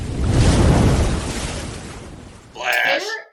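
A water splash sound effect: a broad rushing swell like a breaking wave rises and slowly fades, then a short, bright splashing burst ends it.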